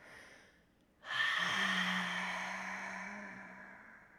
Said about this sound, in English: Now on your time, when you're ready, release this breath and let all the air out of your tummy.